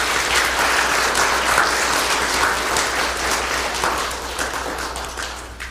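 A church crowd claps steadily in a sustained round of applause celebrating an absent man being given a plaque, dense and fairly loud, with many hands blending into a continuous patter that eases slightly toward the end.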